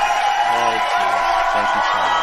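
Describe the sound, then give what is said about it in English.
The audience of the show My Fellow Americans with host Spike Cohen, in Myrtle Beach, South Carolina, cheers and applauds steadily, a dense loud wash of clapping and shouting that holds for about two seconds, with some low voices or whoops breaking through in short bursts. “Keep clapping. Clap for the miracle.”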